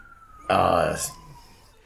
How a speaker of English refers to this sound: There's the siren, everybody. There it is.